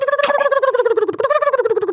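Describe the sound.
A turkey mouth call yelps in a loud, rapid string of raspy notes that rise and fall slightly in pitch, imitating a wild turkey, with no talking over it.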